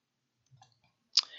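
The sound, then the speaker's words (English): A printed ad page is turned to the produce section: a few faint soft handling sounds, then a sharp papery snap that trails into a brief crinkling rustle. No one speaks. “And turning the page to produce.”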